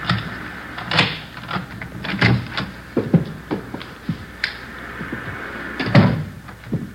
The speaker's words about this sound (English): This one here. There's a front door key. See if you can work it. I know how it works. You go ahead and open it. All right.